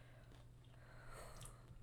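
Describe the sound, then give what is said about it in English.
Quiet, close-up chewing with soft wet mouth clicks and smacks spread unevenly over a couple of seconds, over a steady low hum and no talking. “stop chewing in the mic.”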